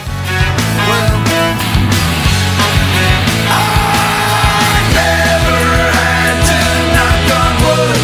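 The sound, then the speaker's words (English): Loud, dense rock music with a singer's sustained scream rising out of the mix midway, building tension as the band drives into the chorus. “So that scream is sort of the, you know, the trick that they did twice, you know, that guitar noise and my scream are the same sort of, here comes the chorus.”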